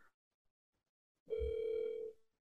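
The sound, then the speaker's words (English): A single steady electronic ringing tone from a phone call placed through a group chat on speakerphone, lasting under a second, with a thin, slightly tinny quality, then cutting off into silence. “Try calling him to the group chat. Make sure you put him on speaker.”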